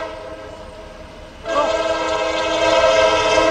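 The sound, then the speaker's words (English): An Alco diesel locomotive, apparently a 1943 S2 heritage unit of the SNC, rumbles steadily, then its horn blasts at about one and a half seconds, a loud, sustained multi-tone chord that holds to the end with no talking. “Oh my God, it sounds like an Alco.”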